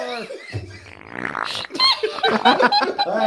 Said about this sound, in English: I'm going to fart on you. Farts are funny.